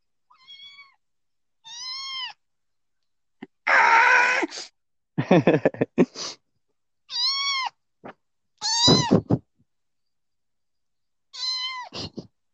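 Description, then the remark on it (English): A kitten meows repeatedly in short, high-pitched cries, about eight separate calls spaced irregularly, some rising and strained, with no talking. “But I also That's heard a because kitten.”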